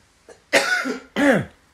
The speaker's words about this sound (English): And sorry, I am coughing so much on this.